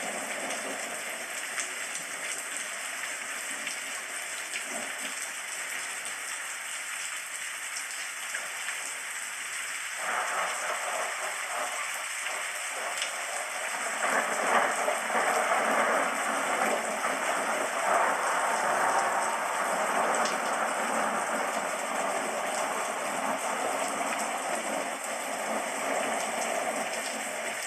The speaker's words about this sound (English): sentient beings of light continue to engage with your synthesis, communicating to your body to cleanse itself as the rain is falling and the thunder is crackling in the distance.